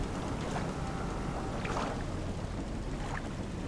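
Small lake waves lap gently, with a few soft splashes at irregular intervals over a steady, breezy rush of open-air noise. No one speaks.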